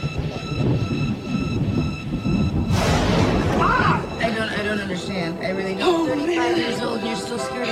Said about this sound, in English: Oh, 35 man. Years old, you're still scared of a little thunder. I am not!